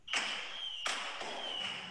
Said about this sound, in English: that literally sounds like you Google video fireworks and you're playing us the Macy's parade